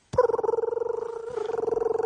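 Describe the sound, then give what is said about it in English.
A voice imitates a scooter with a steady, buzzing motor-like drone that flutters rapidly. It dips briefly partway through, then carries on at an even pitch for about two seconds, with no talking. “I really want to do a scooter noise, but I don't believe in myself.”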